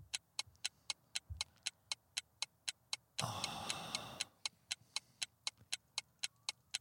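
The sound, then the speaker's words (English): A clock ticks steadily at a brisk, even pace as a countdown timer for a trivia quiz question, with a short burst of rushing noise partway through before the crisp ticks carry on alone. “Time's ticking.”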